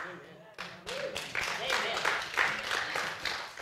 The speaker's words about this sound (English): Amen. Your applause is underwhelming.